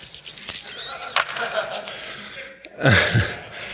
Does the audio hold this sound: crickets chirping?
no